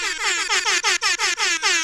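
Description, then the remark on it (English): A loud air horn, an original production air horn of movie theater quality, blares in a rapid string of about eight short, bright blasts, each dipping slightly in pitch, one after another with no pause and no voices. “Return of the air horn today.”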